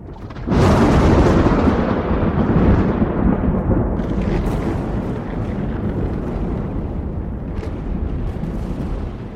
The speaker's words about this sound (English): And then there's this explosion somewhere on the horizon, this little weird, like, reverse lightning bolt, as if it went up into the sky.